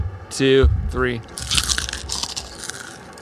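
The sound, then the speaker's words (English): A short vocal sound comes first, then a loud burst of crisp crunching as someone bites into a crispy fried nugget into the microphone, crackling unevenly for a couple of seconds. “We've got a little nugget of crunch that we're gonna get a crunch in the mic going.”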